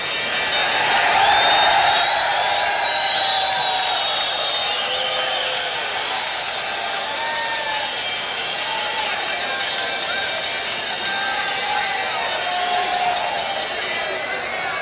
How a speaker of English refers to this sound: Closing bell, New York Stock Exchange.